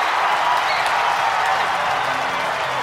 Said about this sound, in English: Little crowd slam and a little boxing bell for what Juwan Howard's done out there.